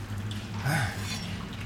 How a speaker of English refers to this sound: Yes. There's quite a bit of water seeping in now. Nothing you can't handle.